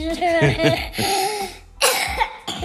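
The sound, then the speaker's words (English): A child who has been sick most of the week coughs several times, harsh raspy bursts spaced over a few seconds, with throaty voiced sounds between them. “There he goes, coughing.”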